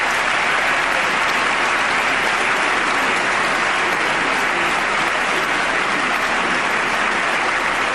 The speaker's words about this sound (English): Oh, and look at all the Democrats standing and applauding. All the Democrats standing up and applauding.